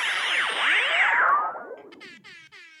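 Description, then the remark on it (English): A loud, brassy air horn blast, DJ Z's gimmick, drenched in swirling echo and flanging, sweeping up and down before breaking into a few stuttering, repeating horn bursts that fade out. No talking. “Air horn.”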